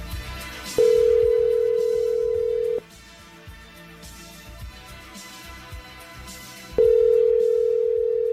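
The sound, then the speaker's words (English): A phone line ringing on the caller's end as a call is placed to WWE Hall of Famer Jake the Snake Roberts: two steady, mid-pitched electronic tones, each about two seconds long, separated by a four-second pause of quiet line noise. No one speaks. “Let's see if we can get him on the line.”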